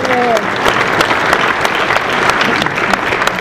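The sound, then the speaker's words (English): A crowd breaks into loud, sustained applause, a hand clap of praise, many hands clapping in a dense, steady wash of sharp claps, with a brief vocal tone at the very start. “Somebody give him a hand clap of praise this morning.”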